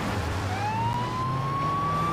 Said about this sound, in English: He's using a Windows siren. What in the world? He's using Windows. What is that? Windows XP? Good grief. I'm not gonna get arrested for having a siren on my kitty van, right?